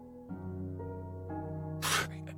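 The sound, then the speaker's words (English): Someone breathes strangely while waking up, with a low, droning, voiced rasp that ends in one sudden, sharp gasp. No one speaks. “You had a weird breathing thing going on, and we were just.”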